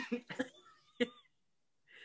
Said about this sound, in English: Do you only cough when you say the letter P? Yes! Hears and says the letter P. Oh, when he hears and says the letter P.